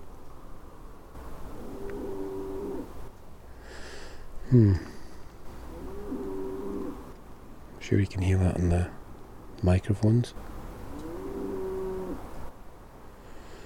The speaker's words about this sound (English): Gosh. That's a cow somewhere nearby.